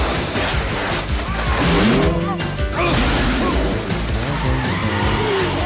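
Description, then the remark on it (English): A vehicle roars and skids while smashing through a wooden shed, with loud, continuous crashing and clattering debris over squealing tires and a revving engine for several seconds. “Really, this goes on for a while. He's going through a shed.”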